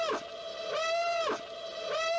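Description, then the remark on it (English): A buzzy Rogue One alarm sound effect blares on its own, a harmonically rich tone that holds steady, then swoops down and back up in pitch, repeating roughly every second and a quarter. “I'm going to put the Rogue One alarm just really quickly.”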